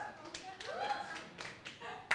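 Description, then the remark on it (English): Scattered applause from a crowd, a patter of many hand claps at moderate volume blending into a dense, uneven wash, with a voice speaking faintly underneath. “Okay, clap.”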